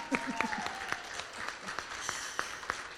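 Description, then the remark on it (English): A small group of people claps unevenly, sharp slaps landing at an irregular pace and overlapping now and then, with some faint murmuring voices underneath. “Can I have some clapping going on?”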